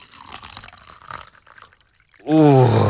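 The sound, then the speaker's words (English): Water pours into a glass with a splashy, gurgling trickle for a couple of seconds, then stops. A loud, drawn-out voice sound follows right after. “Sorry, did you hear me pour a glass of water then?”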